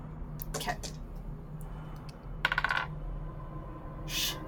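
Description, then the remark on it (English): Dice clatter and tumble across a hard table in a few short, rattling bursts, with quick bouncing clicks in the middle roll and a faint hum underneath, rolled for a history check and landing on a natural 1. “Yeah, roll another history check because it's been a little while since you've been up here.”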